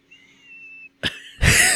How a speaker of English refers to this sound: Listen to my nose. Is that your nose? I thought it was like a door out there. No, it's whistling.